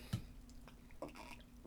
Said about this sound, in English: Sip of coffee to you.